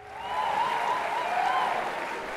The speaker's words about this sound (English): I know. Hold the applause. I am back.